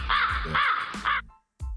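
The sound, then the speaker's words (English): A crow sound effect: three harsh, raspy crow caws in quick succession, loud, followed by a brief silence and the start of another sound. “And this is the crow.”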